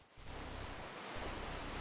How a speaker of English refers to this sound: Hear the waves. Very on the nose.